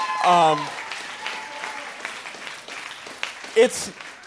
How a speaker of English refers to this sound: I think y'all should be clapping at this point for them. That's just my opinion.